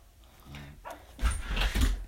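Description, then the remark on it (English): A dog lets out a brief whine, then two loud barks about half a second apart, with no one talking. “Don't mind the dog barking in the background.”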